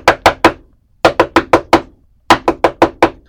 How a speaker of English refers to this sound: Somebody's knocking on the door.